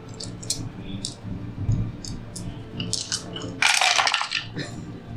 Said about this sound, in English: I love the sound of multiple dice sometimes.